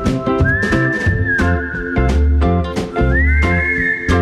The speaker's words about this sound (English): What if I play just a whistle? I don't know any whistle. I gotta play another song and whistle.